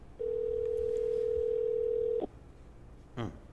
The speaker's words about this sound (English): Yeah, FaceTime, though. Nah, I'm calling the phone.